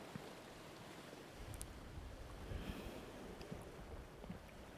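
Ocean waves rush and roar steadily, a broad wash of surf with wind-like noise, swelling slightly louder midway before settling back. No voices are heard.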